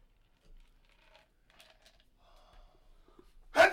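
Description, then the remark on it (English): A single sharp sneeze bursts out at the very end, loud and breathy, after a few seconds of faint scattered rustling and soft breaths. “Bless you. Excuse me, people.”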